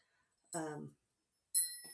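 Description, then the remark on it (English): A short vocal sound, then dark brown clay wind chimes decorated with Celtic knots give a single bright, ringing clink that fades quickly as they come apart in someone's hands. “And now my chimes just came apart in my hands.”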